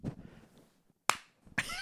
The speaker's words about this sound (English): I'm sync clapping for the audio. Me too.